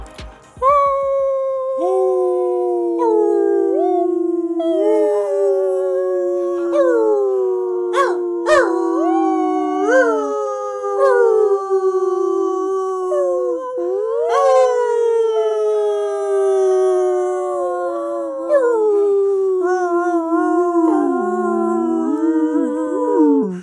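Several wolves howl together in a long, overlapping chorus, their sustained wavering cries rising and falling in pitch, loud, with no talking throughout.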